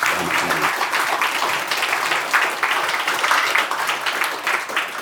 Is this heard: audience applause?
yes